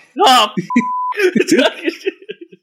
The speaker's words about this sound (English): We're sending you the bell.